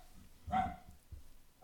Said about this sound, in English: I hope you won't allow that incessant barking to continue on our podcast. Would you and the listeners excuse me just for a moment? Right, I just calmed him.